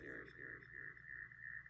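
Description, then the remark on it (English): A steady, ringing tone hangs over a muffled, smeared voice, like a recording caught in an echo or feedback loop, with a low hum underneath throughout. “Okay, it was echoing.”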